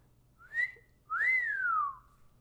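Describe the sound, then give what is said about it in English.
Two clear whistled notes from a person, a short one followed by a longer note that rises slightly then slides downward, fairly loud with no talking. “And he goes, well, if I could whistle, I haven't whistled in so long.”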